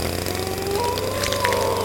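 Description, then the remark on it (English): Chainsaws running, played by the Chainsaw Philharmonic in Damp Realm, with a steady, loud motor drone and buzzing harmonics, the engine pitch climbing slightly partway through, with no voices over it. “The Chainsaw Philharmonic comes to Damp Realm to commemorate the second anniversary of the extinction of the sperm whale.”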